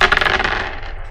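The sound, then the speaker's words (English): Dice rolled on a table: a rapid clatter of small hard objects tumbling and rattling across the hard surface, fairly loud, with quick bright clicks that settle within about a second. “You both roll for me.”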